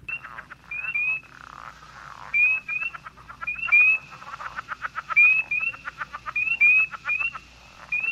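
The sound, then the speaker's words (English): A frog calls repeatedly for several seconds, a fast train of clicking pulses broken by short, rising chirpy notes, clear with no voices present. “So before the break, or during the break, actually, we played the frog sound.”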